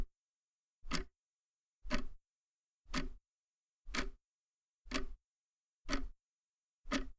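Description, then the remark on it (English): A clock ticks steadily, one sharp tick roughly every second, seven or eight in a row. The ticks are clear, with silence between them and no voices. “Is this where you put in the sound of a clock ticking to represent my body clock?”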